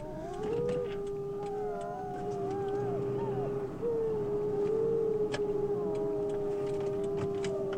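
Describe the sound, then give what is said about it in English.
Several wolves howl together in long, overlapping, wavering tones, one steady high howl held throughout while others rise and fall around it, over a low rumbling background. “Just wolves. There are a lot of them around here.”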